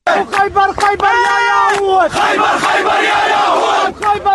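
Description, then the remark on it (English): A large Muslim crowd chants threats against Jews loudly in unison, voices swelling together into rhythmic shouted phrases with a sustained, roaring cry in the middle, dense throughout. “Can we please play the Muslim crowd threatens Jews?”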